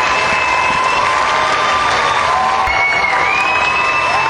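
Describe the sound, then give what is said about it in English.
A large concert crowd applauds and cheers continuously, calling for more after the singer ended her set with a drum solo and walked off stage, a dense wash of clapping with whistles and shouts rising over it, loud and sustained throughout. “Not with this crowd, they're not.”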